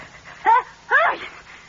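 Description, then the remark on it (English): A single voiced sneeze, a short rising intake followed by a sharper burst, fairly loud against a quiet background with no talking. “Bless you. What's the matter? You catching cold?”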